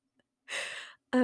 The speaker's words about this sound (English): I can't stop yawning, so I'm sorry, but...